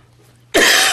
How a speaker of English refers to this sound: Now, not only because I'm coughing and unable to speak, I think we should turn our attention to Valerie Amos speaking on the global refugee crisis.